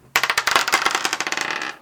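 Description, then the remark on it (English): Dice clatter across a hard tabletop in a quick burst of sharp clicks and rattles that tumble on for over a second before stopping, with no voices. “Dang, so roll your dice to see you.”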